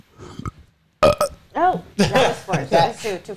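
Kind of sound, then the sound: human body sound, belch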